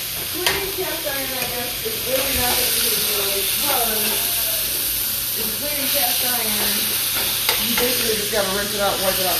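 Food sizzles steadily in a well-seasoned cast iron pan with a constant bright hiss, occasional scraping clicks of stirring, while a person talks over it throughout.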